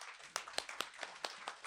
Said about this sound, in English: So round of applause